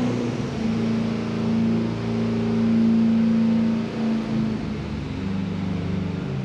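A truck engine with a single turbocharger and no nitrous roars loud under throttle at elevation. It holds a steady droning pitch before the note shifts briefly near the end, with no voices over it.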